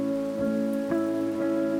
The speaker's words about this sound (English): It's just a storm, and it's just rain, and it'll pass.